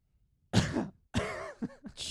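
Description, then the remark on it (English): A loud cough bursts out, followed after a short pause by a raspy, voiced throat-clearing sound and a final breathy hack, with no talking. “A cough?”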